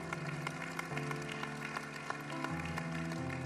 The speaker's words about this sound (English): And we, yeah, go ahead. Y'all can clap. Go ahead and clap.